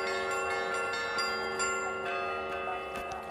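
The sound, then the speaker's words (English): Bells on an island ring continuously with a rich metallic shimmer, overlapping strikes blending into a sustained, layered peal, heard from a boat sailing away from the island; no voices present. “and you hear the metallic ringing of the bells as we sail away.”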